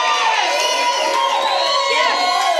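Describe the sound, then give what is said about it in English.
A large church audience cheers and shouts together that they have a father who is a pastor, a dense, loud wall of overlapping voices and whoops that stays steady throughout without any single speaker standing out. “Can you cheer that you have a father who is a pastor?”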